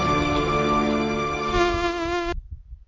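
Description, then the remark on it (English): A mosquito's steady, whining buzz, loud, holds for a couple of seconds and then cuts off abruptly, leaving a brief low rumble. “Because Michael tried to save on his holidays by making his own mosquito repellent.”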